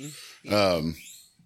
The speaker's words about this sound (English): Why is every animal wanting to make noise right now? I was going to say, what is that making noise? That's a guinea pig, yeah?